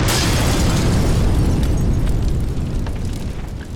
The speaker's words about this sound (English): It crashes through the front window of the small plane, causing the pilot to lose control. The plane spins erratically and crashes into the side of a mountain, exploding in flames.